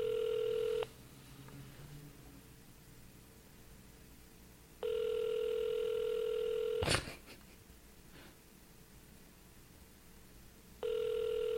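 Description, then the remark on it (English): A phone line rings out over and over: steady electronic ringback tones of about two seconds, separated by silent pauses, with a sharp click in between and nobody picking up. “No one answers their phone anymore.”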